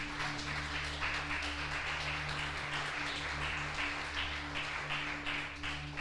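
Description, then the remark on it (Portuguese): An audience applauds the Lord Jesus steadily for about six seconds, a dense, even wash of many hands clapping with no voices standing out, accompanied by a low sustained hum underneath. “Aplauda o Senhor Jesus.”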